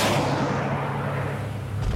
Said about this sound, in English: As you watch, the smallest fragment breaks off of this massive comet and rockets into Turtle Bay, destroying it in an explosion of fire and ash. A second later, another fragment takes out the Aenean ship next to you.